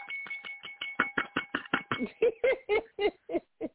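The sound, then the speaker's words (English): A bell is struck over and over in a rapid, steady rhythm, its bright ringing tone hanging beneath the hits, followed by a run of choppy, laughter-like bursts. “I had to walk to hit that bell.”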